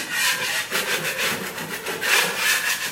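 A blade scrapes repeatedly across dried joint compound over a bevelled joint, knocking down the high points before a second coat, making a steady, gritty rasping with overlapping back-and-forth strokes and no voices.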